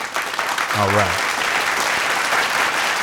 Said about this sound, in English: It's going to the Russo brothers. Round of applause, ladies and gentlemen.